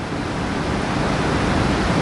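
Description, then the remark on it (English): Heavy rain pours steadily onto a building's roof on a Sunday morning, a dense, unbroken roar of hissing water that stays loud and even throughout, with no voices or other sounds breaking through. “I might wonder why God chooses on a Sunday morning to pour the rain down in this building so I have to scream at all of you.”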